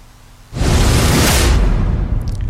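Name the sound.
swoosh sound effect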